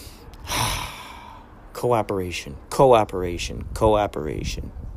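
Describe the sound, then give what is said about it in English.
A person takes a sharp, audible breath in, then lets out three drawn-out, voiced breaths in a slow rhythm, fairly loud. “It's like, here's this, breathing. There's that. Inhale, exhale.”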